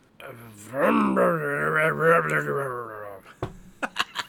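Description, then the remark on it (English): A person imitates a chainsaw with a loud, buzzing vocal drone that revs up in pitch, holds steady for about three seconds, then cuts off, followed by a few short breathy bursts. “let's hear your chainsaw.”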